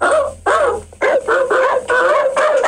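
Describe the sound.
A man imitates a dog barking into a microphone, giving about six loud, harsh, throaty barks in a quick, uneven series with short gaps between them.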